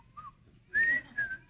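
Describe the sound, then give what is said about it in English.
Someone whistles a short, bright folksy theme melody, a few sustained notes gliding slightly, clear, with no talking over it. “I just felt like someone was going to start whistling the Mayberry RF, you know, the Mayberry song, you know.”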